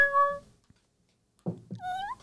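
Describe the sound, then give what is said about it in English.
A person imitates a kitten's meow: a short high-pitched mew, a pause, then a couple of rising, wavering mews, fairly loud with no other talk. “That's more of a kitten.”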